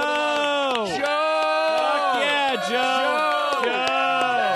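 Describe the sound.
Several voices cheer and whoop over one another in continuous, loud, rising and falling shouts, with at most faint clapping beneath the steady din.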